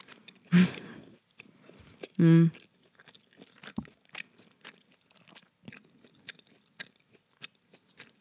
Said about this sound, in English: I don't want to add. So I'm just going to take a moment to chew. There's the ASMR if you want.